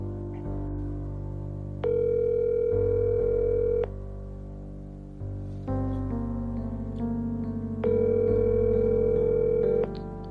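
A phone ringback tone from an outgoing phone call purrs twice, each steady electronic ring lasting about two seconds with a long pause between, heard through the line over a low background hum.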